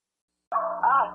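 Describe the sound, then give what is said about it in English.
After a brief silence, dogs bark in the background while being rounded up: two quick, closely spaced barks, moderately loud and slightly whiny, with no talking over them. “Well, while my mom's rounding off those dogs back there, it's a wild canine cheeseburger and liquor party.”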